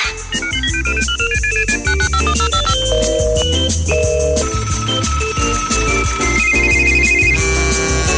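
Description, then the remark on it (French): A bright, melodic phone ringtone plays loudly and steadily during an outgoing call on 22 December 2023, its stepping electronic tune repeating over bass and percussion for several seconds, with no one speaking. “Dernier appel du monde de l'année 2023, 22 décembre. Anne est au téléphone”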